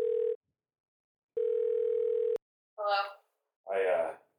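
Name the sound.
telephone dial tone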